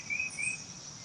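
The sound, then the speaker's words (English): A bird right beside the person recording outdoors gives two short, high, thin whistled chirps in quick succession over a steady background hiss, with no one speaking. “And there's a bird right here next to me too.”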